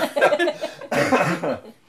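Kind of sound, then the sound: human body sound, cough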